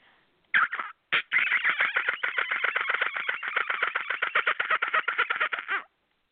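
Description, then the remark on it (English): A person imitates a dolphin call over the phone with a rapid, high-pitched chattering clicky squeal, a short burst followed by a sustained five-second stream of pulsing trills, loud and with no talking. “Get ready for her dolphin call.”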